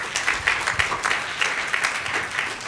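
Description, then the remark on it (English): An audience at an evening talks event applauds the community group Van Citypreneur and the creative agency Joda Creative, a dense wash of many hands clapping at even loudness, with no voices standing out. “So yes, give them a round of applause.”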